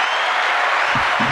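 applause sound effect

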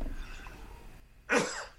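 sneeze

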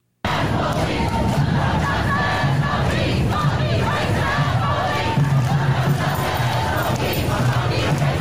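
protest crowd chanting

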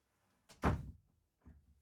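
door being shut

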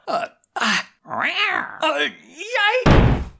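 cat meowing

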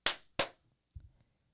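hand clap

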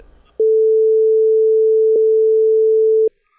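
censorship bleep tone

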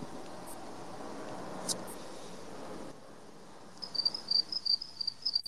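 crickets chirping

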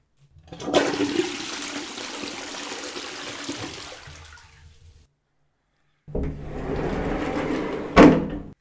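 toilet flushing

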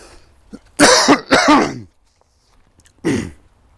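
coughing and throat clearing

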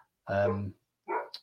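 dog barking

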